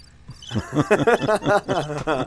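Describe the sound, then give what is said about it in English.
Cricket chirping sound effect plays alone as a quick, evenly spaced run of about eight bright chirps, fairly loud, over a couple of seconds. “So that would probably be a good time to play the crickets.”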